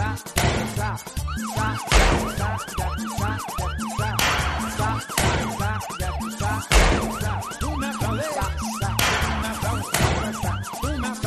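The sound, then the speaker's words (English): A loud emergency siren wails in quick, repeated rising-and-falling sweeps, backed by heavy rhythmic thumps and a deep pulsing low end, with no one speaking. “But like, if I go to my parents' house, I'll immediately hear like, every gunshots, sirens, Mexican music.”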